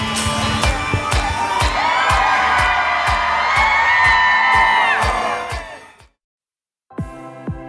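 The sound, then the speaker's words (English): A studio crowd cheers and whoops loudly for about six seconds, with scattered yells and a steady clapping pulse underneath, before the noise cuts off abruptly into silence. “Great crowd. Let's take one more shot of everybody.”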